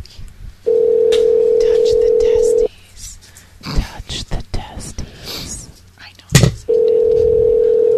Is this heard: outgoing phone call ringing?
yes